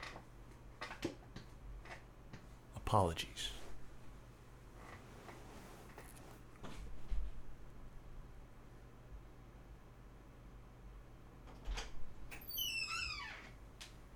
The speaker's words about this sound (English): Probably gonna hear my chair moving the whole time, crinkling and crackling.